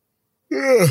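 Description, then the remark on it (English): A single breathy morning yawn starts abruptly after a moment of silence, its voiced tone sliding downward in pitch. It is fairly loud and stands alone, with no talking. “Early defense, morning yawn. That defense is, I'm sorry, I tried to catch it before.”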